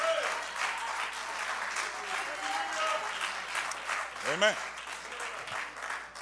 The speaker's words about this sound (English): Oh, if I got a believer, clap your hands unto the Lord and magnify.